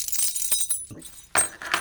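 The keys to Stephen's flat, a sound prop from a stage show, jangle in two bursts: a rattling run of bright metallic clinks, a short pause, then a louder shake. No voices.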